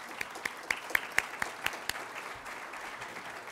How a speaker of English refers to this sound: Thank you to our lead event sponsor, the Carpenter and Allied Workers Union, for their continued support of ULI Toronto programs, and I'd like to ask you to give them a round of applause.